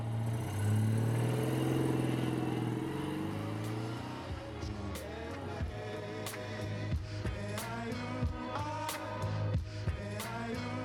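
car driving

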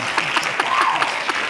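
applause

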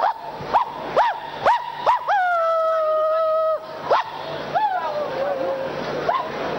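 dog barking and howling

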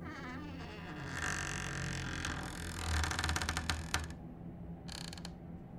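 door slowly creaking open

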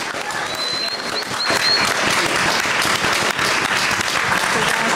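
audience applause

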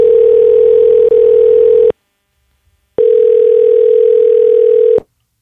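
telephone dial tone

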